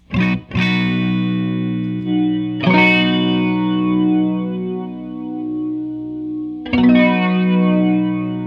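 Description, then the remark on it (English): Electric guitar chords played through a TC Electronic Limited Edition Chorus Flanger pedal: two quick strums, then two more spaced apart, each ringing out long with a shimmering, swirling wash over the sustained notes. No voices. “Chorus Flanger is a Winner!”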